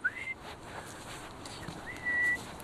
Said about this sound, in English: I don't know if he likes it when I whistle. I just decided that I'd whistle when I come up here.